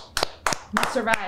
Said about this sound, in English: That was a horrible clap.